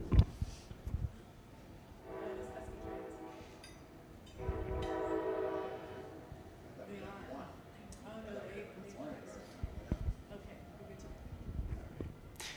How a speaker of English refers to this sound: we're going to pause for a second while a train goes by.